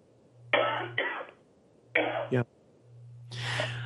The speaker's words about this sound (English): I got a cough. Sorry about that. Just 1 minute. It happens to us all.